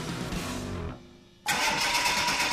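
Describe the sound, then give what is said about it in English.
A car engine cranks and sputters without catching, fades for a moment, then a loud, harsh whirring surges back. No one speaks. “Oh, no. Are we stuck in the cold? I told you we should have taken the car to Buchanan Service Center.”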